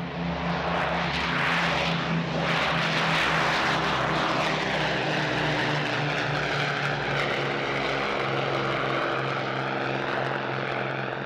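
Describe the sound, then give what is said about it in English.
A steady, loud drone of propeller aircraft engines, with strong low harmonic hum and a sweeping whine that rises and falls slightly as the engines run continuously without any voices. “A lot of the stuff is trying to keep one step ahead of the aircraft, looking after the engines, what power settings need, what configuration the aircraft needs to be in, and just trying to anticipate and keep ahead of the captain's needs as well.”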